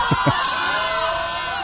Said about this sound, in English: The tying run is at second base. And the Siegel fans yell balk.